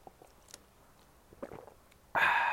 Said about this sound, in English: I'm going to take a drink of water right here.